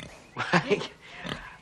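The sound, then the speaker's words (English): A female pig at a hospital grunts and oinks, a couple of quick snorting grunts in a row followed by one shorter grunt after a brief pause. “Doc, my foot feels so good, I brought you this pig.”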